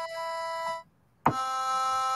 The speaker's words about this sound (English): Right. So that's a little buzzer-like. It's a buzzer on off. Kind of buzzer-like. Yeah. It's just on off, hard off.